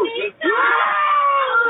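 A person screams in distress during an emergency call after a gun went off and shot a one-year-old baby: a short cry followed after a brief break by a long, loud, sustained wail, somewhat muffled like a phone line.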